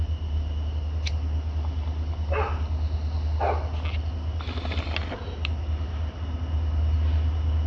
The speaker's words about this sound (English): And I might pause a little bit because this dog is barking a little bit. But he might be trying to chase a skunk.